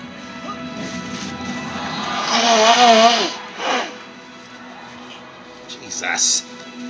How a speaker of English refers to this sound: My apologies, people, if me blowing my nose was very loud. I hate fucking sinuses, man.